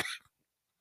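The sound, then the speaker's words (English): A single short, sharp cough, fairly loud, a quick breathy burst that cuts off into silence with no talking around it. “That's making me cough just a little bit.”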